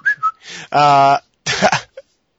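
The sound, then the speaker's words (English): A few short whistled chirps, followed by a loud, buzzy vocal call and a breathy burst, ending on a quick high note, like a person mimicking a bird. “Sometimes I just like whistle sometimes I whistle to the birds in my garden and they like intermediately whistle back.”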